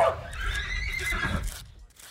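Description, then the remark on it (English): A horse on a ranch gives one drawn-out, wavering whinny that lasts over a second, clear over a low rumbling background before trailing off. “Almost every horse on the ranch has a troubled past.”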